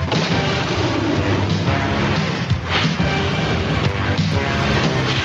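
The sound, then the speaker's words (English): A loud, dense opening theme song with animated accompaniment, driven by booming low brass, with heavy percussive hits and a full, continuous wall of sound throughout. “Yeah, that low brass.”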